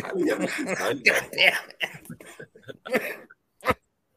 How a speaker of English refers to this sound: Yeah, that cough that we heard, buddy. Yeah. The cough. You didn't watch Seinfeld, right? You stupid idiot. The laugh turned cough.